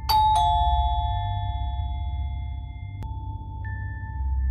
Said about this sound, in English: After a few days, one afternoon, a neighbor came from side house and rang the calling bell.